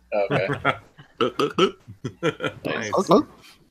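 A cartoonish drinking (chugging) sound effect from the Megatouch game Chug Monkey: a rapid, rhythmic run of about a dozen throaty, burp-like gulps, fairly loud and voiced, with no talking over it.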